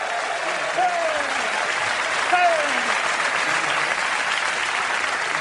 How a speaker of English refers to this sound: He's laughing. I love he gets a big round of applause.